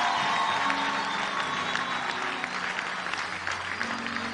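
An audience claps hands steadily, a dense, continuous patter of many palms at even loudness throughout, with faint crowd murmur and a low hum beneath.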